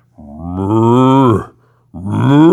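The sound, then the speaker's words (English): A man's voice imitates a bull's moo, the moo he recorded as the voice of a bull on a Disneyland ride, with two loud, drawn-out lowing calls. The first swells and holds for over a second, and the second begins after a short pause. “That was, and they recorded that, and that's my moo.”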